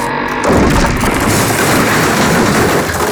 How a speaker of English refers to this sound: AJ leapt from the falling bridge to the doorway in the building, Sully's arrow just grazing his shoulder. Below, the bridge plummeted into the street in a shattered heap.